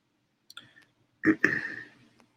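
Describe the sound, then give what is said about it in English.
A few sharp clicks, then a short, louder clatter of keys pressed in quick succession on a computer keyboard, fairly quiet, with no voices. “So now just for shits and giggles, should I do the same thing and try typing in just scrub python, see what comes up?”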